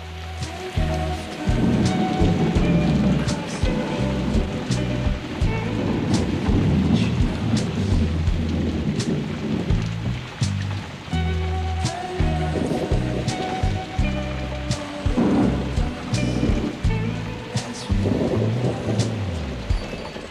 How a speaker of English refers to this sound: Okay, so this thunder is definitely something we haven't seen before. The rain is extraordinarily thick and blue, and it disappears when it reaches the ground.